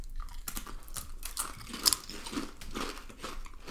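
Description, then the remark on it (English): Crunching of sweet Thai chili flavoured Doritos tortilla chips, a run of crisp, irregular bites and chewing with sharp crackly bursts, heard alone without talking. “Okay, this is the spicy, the sweet Thai chili. I don't think I've ever had these. Spicy sweet chili. We're gonna crunch on.”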